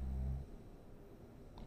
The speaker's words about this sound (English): I'm sorry if you can hear Wonder snoring. He is right here in my lap. You breathing kind of loud.